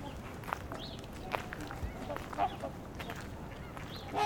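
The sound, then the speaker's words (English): Ring-billed gull calls ring out in short, sharp bursts over a busy outdoor backdrop, with several brief cries scattered across the scene amid other waterfowl noise and voices. “I think that was a ring-billed gull.”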